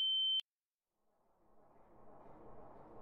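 A loud, steady high-pitched ringing tone sounds briefly, then cuts off sharply with a click. After a moment of silence, a low, hissy wash of noise slowly swells.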